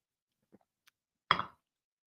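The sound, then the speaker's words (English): A couple of faint cup clinks and taps, followed by a short, louder slurping sip of coffee lasting a fraction of a second, then silence. No one speaks. “I think I'll take a sip.”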